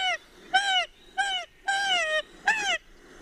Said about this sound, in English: You get this call when you've got the bird in the hand and you're swinging it upside down. It's a degree more, I think, than the last in terms of alarm. This beautiful bird is a bluey grey colour, larger than a tui, with a distinctly longish tail.